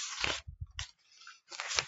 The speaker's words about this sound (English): I'm flicking through the comic as I'm talking, which is why you can hear the riffling of paper.